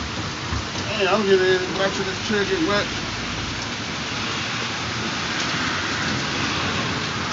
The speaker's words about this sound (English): We in the rain. Live in the rain and the storm. We doing a damn thing. Man, I'm getting back to this chair, get wet.